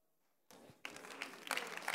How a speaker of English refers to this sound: No. Stop clapping.